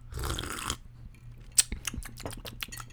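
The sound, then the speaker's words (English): An airy slurp of a creamy orange milk drink, then a run of small wet mouth clicks and swallowing sounds. No one speaks. “I'm going to take my sip.”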